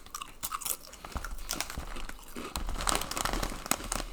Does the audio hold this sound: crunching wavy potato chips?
yes